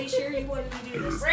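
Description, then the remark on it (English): A single drawn-out burp, low and croaky with a rough, gurgling texture, lasting just over a second at moderate loudness, with no talking over it. “That was a burp.”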